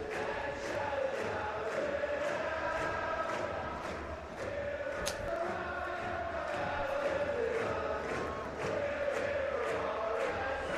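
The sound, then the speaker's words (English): A stadium crowd at a Real Salt Lake (RSL) soccer match sings the Believe anthem together before kickoff in a sustained, rhythmic chant, the massed voices steady and loud across the whole stretch, with no individual talking standing out. “The crowd up singing the Believe anthem.”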